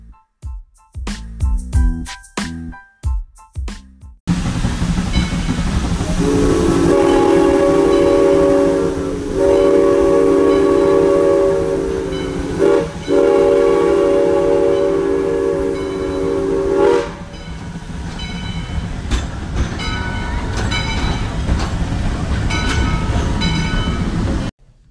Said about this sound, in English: So hold on to your hats, folks, because we're rolling into Symbiosis Town on the Symbiosis Now train